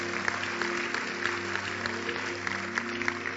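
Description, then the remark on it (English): An audience claps for Jesus during a church sermon. The steady clapping lasts a few seconds as a dense wash of many hands, with scattered sharper claps standing out, over a low sustained organ-like hum. “Clap for Jesus.”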